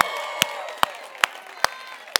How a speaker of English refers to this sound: Can we just applaud her?